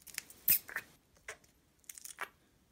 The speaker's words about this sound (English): And this is really important. Super important, squeaky fart putty.